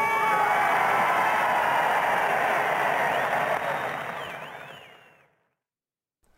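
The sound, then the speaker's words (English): A large crowd cheers and roars in a dense, steady wash of noise as Winston Churchill appears on a balcony and speaks to them, with a few rising whistles near the end before the sound fades abruptly into silence. “I think it's sort of spine-tingling, and I love the way that the crowd are actually interacting with him.”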